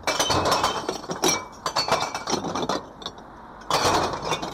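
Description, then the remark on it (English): A recycling crew empties a box of glass bottles and newspapers into a recycling truck in a dense, clattering cascade of bright clinks and crashes, easing briefly before a second loud burst of shattering glass near the end. “crew empty another box of bottles and newspapers into the truck.”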